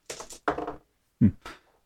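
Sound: dice rolling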